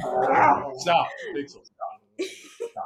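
A dog lets out a long, rising whine, then gives several short, sharp barks and yelps with brief pauses between them.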